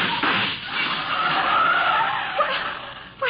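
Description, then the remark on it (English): A car tears past at speed, tires screeching over a loud, steady rush of engine and road noise that holds for a few seconds before easing off, as gunshots are fired from the car. “The driver of that car threw some hot lead our way.”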